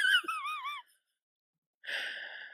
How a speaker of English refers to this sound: Ooh. Sorry, I yawned.